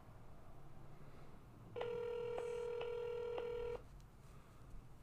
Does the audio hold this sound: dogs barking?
no